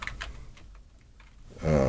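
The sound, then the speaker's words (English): Several soft, quick clicks of typing on a computer keyboard, spaced unevenly, then a louder humming, voice-like tone swells in during the final moments. “I'm sitting here. Typing it in.”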